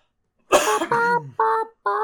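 A harsh burst of coughing, several rough hacks in quick succession with a voiced, throaty quality, sounding slightly off-mic and fairly loud, with no talking around it.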